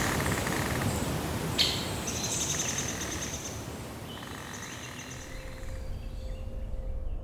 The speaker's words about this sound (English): The only sounds were leaves rustling and now and again a bird chirping.